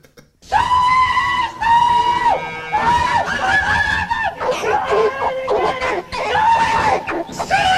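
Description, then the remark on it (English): Mickey Dolenz bellows a loud hog call to call the pigs, belting out several long, drawn-out "sooey" cries one after another, his voice high, strained and wavering in pitch. “What happens when you let Mickey Dolenz off the chain doing a hog call?”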